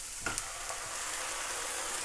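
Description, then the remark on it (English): Onions and garlic sizzle steadily in a little olive oil with a splash of red wine, a continuous hissing crackle with a couple of sharp pops near the start and no voices. “So all that is onions, garlic, a little olive oil, and red wine.”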